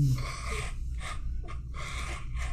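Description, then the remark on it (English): A man blows his nose in several rough, breathy bursts, fairly loud, with short gaps between blasts over a steady low rumble. “Blow his nose? Apparently.”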